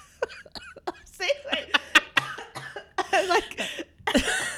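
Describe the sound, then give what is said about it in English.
A person launches into an exaggerated, put-on smoker's cough: a quick string of sharp, dry hacks, then longer raspy, wheezing coughs for several seconds, with no other voices. “I'm just really leaning into my like crazy old aunt at the party, like wearing a lampshade and just like with the smoker's cough.”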